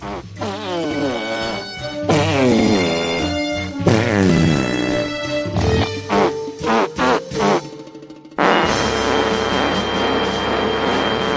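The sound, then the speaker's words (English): A loud run of wet, buzzing fart noises from a man with one arm, with pitch that swoops up and down almost like a tune, then a burst of short choppy blasts before a long sustained one. “There's a guy with one arm that farts.”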